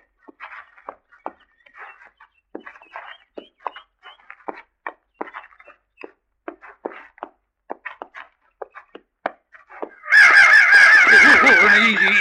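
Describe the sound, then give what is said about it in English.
Large crows squawk in a rapid, irregular series of harsh caws, then erupt into a loud, dense burst of overlapping squawking near the end. “They're sure big for crows.”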